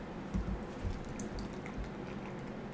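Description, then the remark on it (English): A&W root beer soda pouring into a glass, a steady soft fizzing and splashing with a few small bubbly pops, fairly quiet, with no voices. “So I poured my A&W into my glass.”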